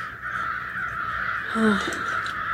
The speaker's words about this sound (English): The crows are, must be an eagle over there.